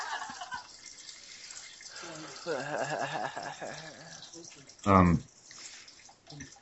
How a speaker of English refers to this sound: Yeah, I wonder if people out there can hear me pissing. Yeah. We can hear that.